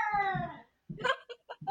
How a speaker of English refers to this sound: By the way, can you hear the cats completely freaking out in the background right now? I can. It's Yeah. great. Dorian just randomly went sprinting back and forth across the entire apartment, ran to the top of the stairs and started screaming.